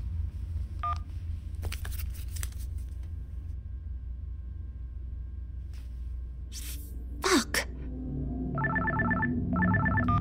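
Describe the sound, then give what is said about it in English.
Electronic telephone dialing tones sound over a low rumbling background as someone calls back, followed near the end by two bursts of a bright, warbling phone ring. A few clicks and a brief muttered word come in between. “Look, I'm going to hang up. I want to check the recording. Yeah, me too. I'll call back in a sec.”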